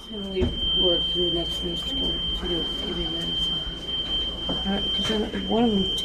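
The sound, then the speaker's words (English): A hospital patient call button alarm holds one steady, high-pitched electronic tone without a break, while people talk loudly over it. “Sometimes my mother wakes up in the night to find the buzzer blaring and an orderly asleep in her room.”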